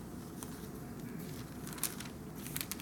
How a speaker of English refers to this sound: But just let's just turn. I want to hear some pages turn.